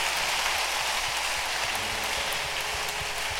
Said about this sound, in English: Now you can clap if you want to clap. Those of you who are not everybody, those who want to clap.